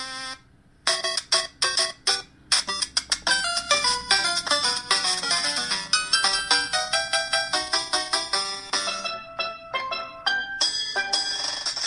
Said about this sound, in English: So the timer was going to go off and didn't want to say any more. That's what happened there.